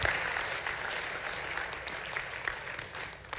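An audience bursts into applause for a friend who came from Toronto, a dense, steady wash of many hands clapping at once, holding a fairly even loudness throughout and tapering slightly toward the end.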